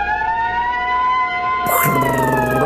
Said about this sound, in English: Sirens.